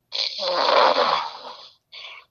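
A drunk man who has fallen asleep in the middle of a Thursday-night phone call snores heavily over the phone line, one long rasping inhale lasting over a second followed by a shorter snort-like breath, muffled and band-limited, with no talking.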